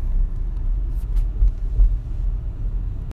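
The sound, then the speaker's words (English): Steady low rumble from inside a moving car pulling into standstill traffic, a dense road-and-engine drone with faint higher swishes, continuous for about three seconds before cutting off abruptly near the end. “Maybe give you a little update while we're on the road, because it looks like as we're pulling into some standstill traffic”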